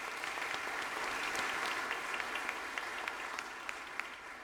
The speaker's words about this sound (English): all those who have been elected by our congregation to serve as officers in our church. Elders and deacons and shepherding deacons are before you, and isn't this a good crowd? Would you welcome them with your round of applause?